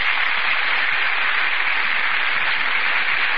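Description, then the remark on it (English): Steady, dense applause from a theater audience as Vivian Lee and Laurence Olivier enter from the wings, a broad hiss of many hands clapping at once, sustained and even in loudness throughout with no voices on top. “That burst of applause, ladies and gentlemen, is for Vivian Lee and Laurence Olivier, who have just entered from the wings.”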